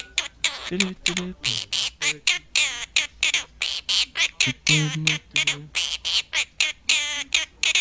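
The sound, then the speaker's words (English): A pet bird chirps and squawks a tune, a steady run of short, bright, rhythmic notes, with no talking over it. “This is the bird chirp singing.”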